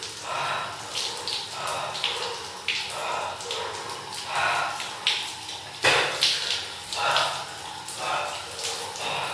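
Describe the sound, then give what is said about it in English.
Cold shower water splashes steadily against a person's body, a continuous hissing spray that swells and eases in repeated surges over about nine seconds. “So right now, I'm just letting the water hit me.”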